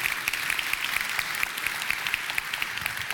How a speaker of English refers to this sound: Can we give the Lord another round of applause this morning?